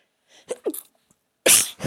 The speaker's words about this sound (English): Excuse me. I had to sneeze, obviously.